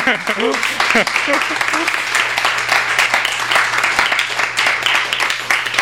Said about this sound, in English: Thanks. It's very kind of you. You don't need to like clap in the middle. Because there's more.